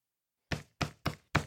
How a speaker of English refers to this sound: Crawford knocked on the door of Simon Heckler's RV. Just a minute, Heckler said from inside.